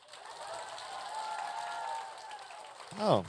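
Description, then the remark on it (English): A large audience at LeakyCon, a Harry Potter convention, claps steadily for a few seconds in answer to how many came from somewhere other than Boston, with scattered cheers and whoops rising above the applause, before a single voice cuts in near the end. “And I wanted to get just by show of applause, how many people have you come to LeakyCon from somewhere other than Boston?”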